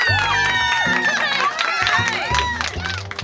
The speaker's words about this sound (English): It's stand-up week on Chompers, so let's get a round of applause going for our next comedian,